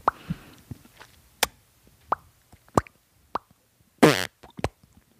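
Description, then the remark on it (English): Someone makes fake fart noises with their mouth into a microphone: a string of short, loud, wet pops at uneven intervals, then a longer buzzing raspberry followed by a few more quick plops. “You mean my fake fart noises that I just made into the microphone?”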